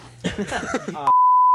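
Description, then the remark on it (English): A man's voice speaks briefly, then a loud, steady electronic censor beep cuts in over a person's name and holds a single pure tone until the end. “Is his name? Just that beep. Yeah, just beep.”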